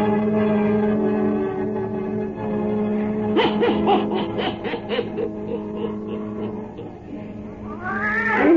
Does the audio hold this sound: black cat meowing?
yes